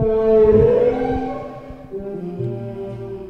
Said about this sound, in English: On a windswept escarpment, on a hillside outside the Sunshine Coast hamlet of Mullaney, the sound of whale song can be heard.